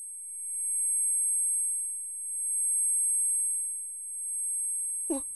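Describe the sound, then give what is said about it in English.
A steady, piercing high-pitched ringing tone, like ears ringing, holds unbroken for about five seconds before a brief burst of noise cuts in at the very end. “This episode contains mentions of kidnapping, static, ringing ears, loud noises, gagging, nausea, vomiting, detailed gore, and some very disturbing audio clips of screams and whispers.”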